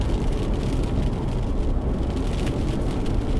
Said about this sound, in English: Something nice about driving in the rain, in something as tall as this, as high riding, you do feel isolated from the massive puddles when you've got 17 or 18 inch wheels.